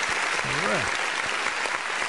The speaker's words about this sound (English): Big shout out to Darren Wolf for listening. Let me give Darren Wolf a little bit of applause too.